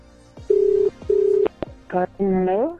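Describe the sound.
Two steady ringback tones purr through a phone line, each lasting under half a second, followed by a sharp click as the call connects and a voice briefly answers.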